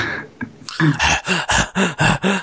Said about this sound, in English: My character is now heavily breathing.